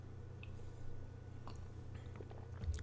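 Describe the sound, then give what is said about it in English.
A quiet sip of plum wine, 12% alcohol by volume, with soft wet slurping and mouth clicks over a steady low hum, and no talking. “So now I'm going to go ahead and take a sip of this.”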